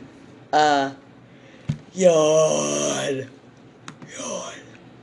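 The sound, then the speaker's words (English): A person yawns loudly, a long drawn-out voiced yawn framed by shorter breathy, groaning vocal sounds, with no other talking. “Yawn.”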